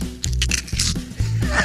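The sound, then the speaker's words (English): Someone chewing a bite of turkey with loud, crunchy mouth noises: a quick series of crackly, crisp bursts over about a second and a half, with no talking. “What it sounds like when you eat a little piece of the turkey.”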